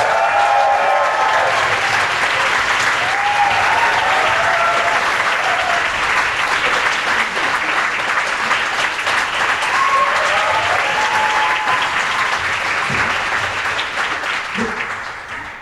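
An audience applauds steadily for about fifteen seconds as Corin Hardy is welcomed on stage to talk about Gangs of London: a dense, loud wash of clapping with a few faint cheers and whoops mixed in, tapering slightly at the end.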